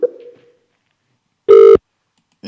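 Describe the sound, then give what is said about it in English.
After a short fading blip and a pause, a single loud, steady electronic telephone tone sounds for about a third of a second after the other caller hangs up, followed by a faint brief click. No one speaks. “Oh, shit. She hung up.”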